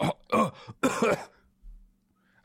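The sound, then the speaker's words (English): Someone imitates a cough or throat clearing: a few rough, throaty bursts in quick succession, then a short stretch of near silence. “That's what someone does when they cough.”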